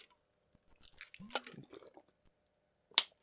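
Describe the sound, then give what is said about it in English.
Someone takes a sip of a drink, with a second of soft wet slurping and swallowing noises, followed by a short pause and a single sharp click. “Let me get a sip real quick.”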